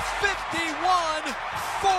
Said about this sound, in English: I love radio calls, right? I mean, you hear the microphone. You know, they get it. You get the microphone all jumbled up, and they're partying in the booth.